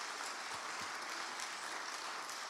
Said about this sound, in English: So you guys, could you all stand, please? So could we give them a round of applause? Because they serve so well.